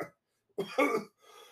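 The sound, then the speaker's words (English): A person recovering from the flu coughs twice in quick succession, harsh, followed by a soft breathy exhale as the sound trails off. “I apologize for my coughing, folks.”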